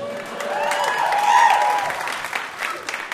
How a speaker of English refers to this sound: Pause for applause.